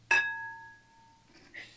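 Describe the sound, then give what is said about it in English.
A single bell is struck once during a church service to affirm a prayer, giving a bright metallic ring whose clear tones hang and slowly fade over about a second before a soft rustle follows. “And each one of us knowing that this is already so, by the bell we know it's affirmed.”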